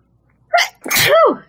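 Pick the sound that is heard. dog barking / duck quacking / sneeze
sneeze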